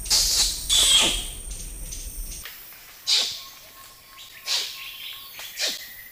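Orangutan kiss squeaks: about five sharp, high-pitched squeaky calls that swoop downward. They come at irregular intervals with quiet gaps between them, and nobody speaks.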